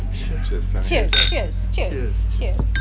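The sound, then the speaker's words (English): Glasses clink together in a toast, a bright chime rising over lively voices and steady background hum. “Cheers, my brother.”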